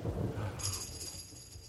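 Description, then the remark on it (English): A low, muffled rumble of thunder rolls briefly and fades. A faint, steady high ringing shimmer sets in partway through and lingers to the end. “I heard the thunder.”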